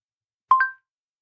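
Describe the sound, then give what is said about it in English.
A short two-note electronic chime, a quick rising pair of clean tones, rings out clearly on its own in silence and fades within a fraction of a second: the voice assistant activation sound on a Pixel phone, triggered by double-tapping the back of the phone with TalkBack on. “So I managed to enable the chime.”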